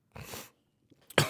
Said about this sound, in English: excuse me, that was just I swallowed my spit on accident. That's why I coughed. I do not have COVID-19.